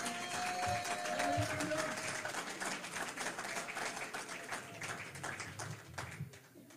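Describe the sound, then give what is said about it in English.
A crowd claps steadily in praise of the Lord for several seconds, a dense crackle of many hands with a few raised voices and cheers mixed in early, the applause gradually thinning toward the end. “Give the Lord a hand clap for praise tonight.”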